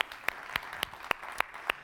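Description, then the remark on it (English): A church audience claps for their young sound technician, together in a steady, even rhythm, about seven sharp, bright claps falling at regular intervals over a soft wash of scattered applause, with no one speaking. “You can clap for that.”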